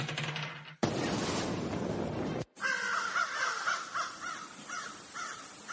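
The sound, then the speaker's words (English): Ravens caw repeatedly and harshly, several birds calling in a rising, overlapping chorus after a burst of loud, rushing noise, with no one speaking. “So basically at this point, so you conjure your ravens and they beeline it for one of your pursuers, preferably probably the one that attacked you, I imagine.”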